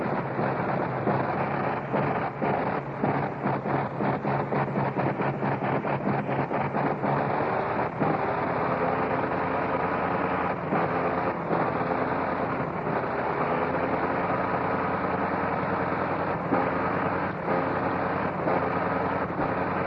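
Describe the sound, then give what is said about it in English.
A 425-horsepower Liberty aircraft engine warming up after starting, a loud, steady rumbling roar with a rapid pulsing beat early on that smooths into a continuous drone. No one speaks. “I'm going to let you turn up your gain, turn up your receiver gain, and you can hear the sound of these 425 horses on this great Liberty engine.”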